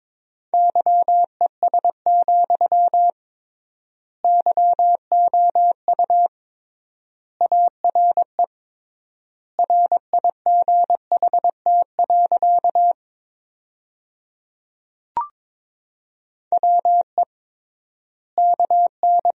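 Morse code at 22 words per minute in a steady mid-pitched tone, sending sentences built from the top 500 words. Rapid dots and dashes come in short bursts with triple-length gaps between words, plus one brief click partway through. No one speaks.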